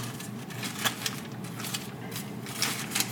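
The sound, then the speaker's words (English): Ground beef (90% lean, 10% fat) with onions sizzling in an enamel Dutch oven as it starts browning for empanadas. A steady, fairly soft hiss of crackling fat with scattered sharper pops and spits throughout, no voices. “You should hear a nice sizzle because we want this to start browning right away.”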